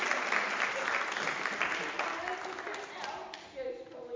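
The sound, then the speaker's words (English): A crowd applauds steadily, dense clapping at a fairly loud, even level before thinning slightly toward the end, with faint voices mixed underneath. “Yeah, can you give them another round of applause?”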